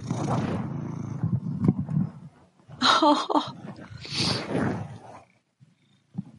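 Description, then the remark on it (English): A domestic cat vocalizes into the microphone: a low rumbling stretch, then two loud, drawn-out yowling cries about a second apart, ending with a faint short sound. Nobody talks. “Or is it is that cat's turn?”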